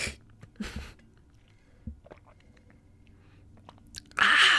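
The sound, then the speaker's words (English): Someone sips water: a soft slurp, faint wet mouth clicks and swallowing noises, then a sudden louder breathy exhale at the end. “Let me take a sip of water, okay, really quick.”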